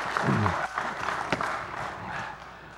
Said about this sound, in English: Well, don't stop clapping now. My goodness.